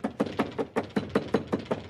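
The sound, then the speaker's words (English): A rapid, steady series of about ten knocks on a door, moderately loud, with a brief hitch midway and no voices. “get the door for me.”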